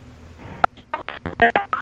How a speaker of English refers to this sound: Wow. What happened? Your phone is bad. Oh, you're pressing tones. Oh, it doesn't come through right.